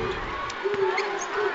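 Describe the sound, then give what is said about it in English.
A college basketball crowd in the arena at a BYU game reacts with a steady wash of roaring voices after a step-back three-pointer rolls in and out, holding at an even level throughout, with a few brief sharper shouts rising out of the noise. “What a big reaction from the crowd there.”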